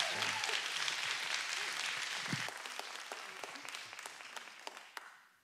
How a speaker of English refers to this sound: Amen. Amen. Come on, one more round of applause. We love you, sir.